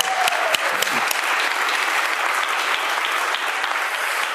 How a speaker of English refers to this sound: Yeah, that deserves a round of applause.